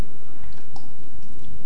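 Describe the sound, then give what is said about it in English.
A speaker giving a talk takes a few soft sips of water, with quiet wet gulping and swallowing sounds in a short uneven rhythm, and no talking. “I seem to be going through the water pretty well as well.”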